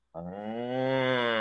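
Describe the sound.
A single long, loud cow moo sound effect, steady, starting abruptly and holding its low, rich tone for over a second with no talking.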